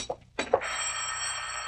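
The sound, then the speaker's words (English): A telephone rings with a steady, shrill, bell-like tone that begins after a couple of brief bursts and keeps sounding loudly and continuously to the end, with no talking. “I'm not going to answer it.”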